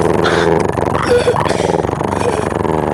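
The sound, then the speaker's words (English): A human voice makes a low, rolling purr, a steady throaty rumble with a fluttering texture that lasts about three seconds without pause. “Do you like it when I purr, or do you think it's silly?”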